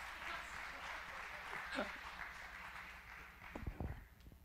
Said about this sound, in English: Let's give him a round of applause because he is so cool.